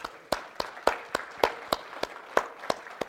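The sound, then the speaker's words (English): An audience claps hands for the Lord in a steady, even rhythm, roughly ten sharp claps in quick succession, fairly loud over a faint background murmur. “Let's give the Lord a hand clap right now.”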